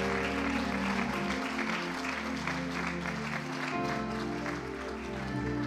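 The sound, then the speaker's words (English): A church audience claps loudly and steadily throughout, the dense applause blending with sustained organ-like music playing underneath. “Let's clap real loud.”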